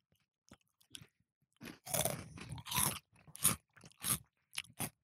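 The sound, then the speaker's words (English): Crisp, loud crunching as spicy chicken wings are bitten and chewed: a few faint clicks at first, then a run of sharp crackly bursts roughly every half second, with no one talking. “Spicy chicken wings, sorry.”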